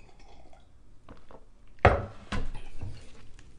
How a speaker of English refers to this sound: hold on, sip of tea.